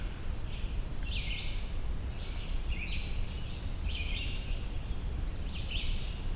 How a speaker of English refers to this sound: There's two red-shouldered hawks here. Maybe that's just a regular call, not a juvenile thing.